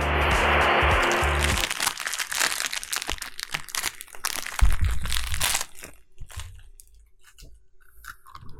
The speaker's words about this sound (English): Those are some crunchy beans. Sounds like you're eating a granola bar.